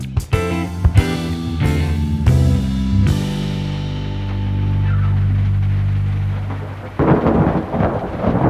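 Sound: rain and thunder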